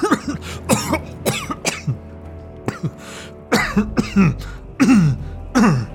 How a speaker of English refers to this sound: As he rises, a sudden coughing spasm overtakes him.